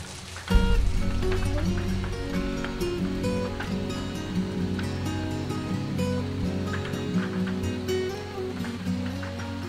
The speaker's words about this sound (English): counting the last few seconds, ticking against the window in the rain.